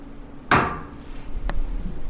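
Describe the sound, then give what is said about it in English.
Two metallic knocks from a dining room radiator in a house after the thermostat was turned up: a sharp, loud clank with a brief ringing decay, then about a second later a softer, shorter tap, over quiet low background hum. “turned his thermostat up, and we pulled chairs up to his dining room radiator and lay in wait.”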